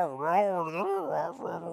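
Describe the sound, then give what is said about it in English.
A person's voice imitates the noise a dog named Cranberry makes when happy: a continuous whiny warble that slides up and down in pitch for under two seconds, then breaks into a rougher, grumbly yodel. “This is the noise Cranberry makes if she's happy.”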